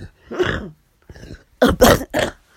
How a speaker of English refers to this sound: Jeez, I apologize for the coughing attack.